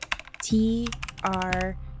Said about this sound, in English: Close your eyes and type truck nuts. How's he supposed to do it with his eyes closed?